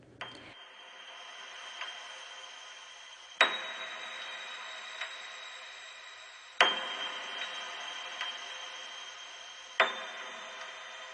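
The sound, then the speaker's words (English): A slow, echoing clock tick sounds about every three seconds, each beat sharp and ringing out with a long metallic tail, with fainter ticks in between and no voices. “With each passing second, the clock counted down.”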